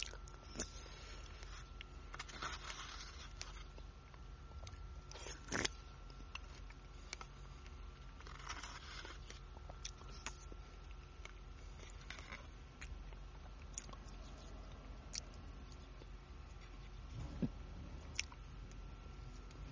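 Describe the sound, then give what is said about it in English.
Someone bites into and chews strawberries, with moist, squishy crunches and soft smacking repeating irregularly over about twenty seconds, a few sharper bites standing out against a low steady hum. “These strawberries are going to give me some energy.”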